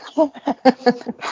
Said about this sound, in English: it's a very large dog.